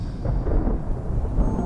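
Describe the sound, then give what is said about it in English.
Heavy rain and gusting wind roar steadily, with a deep, rolling rumble of thunder running underneath. The sound stays loud and continuous throughout, with no voices. “The rains grew loud and the wind blew fast.”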